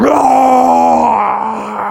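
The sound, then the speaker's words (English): A voice imitates a giant roar during a told story, the roar of a living tree that has crashed through the front door of a visitor center: one sustained, loud, low groaning bellow with a steady strained pitch that sags slightly toward the end, lasting about two seconds with no other talk. “And he gave out a giant roar.”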